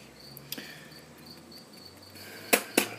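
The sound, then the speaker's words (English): A faint cricket chirps in short, repeated high-pitched pulses against a quiet background, with a few sharp clicks or taps breaking in. “I hear a cricket.”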